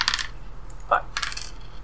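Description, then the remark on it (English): Dice rolled for a game move, roll with dark plus 3, clatter across a hard surface in a few sharp bursts of clicks, a bright rattle at the start, a single knock midway, then another quick tumbling rattle before settling, coming up 8. “It's roll with dark plus 3.”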